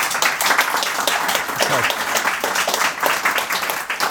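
Sustained applause from an audience at an evening book talk in Bristol on Is Socialism Still Possible in Britain, welcoming the speaker, with dense overlapping claps at a steady loud level throughout and faint voices mixed in underneath.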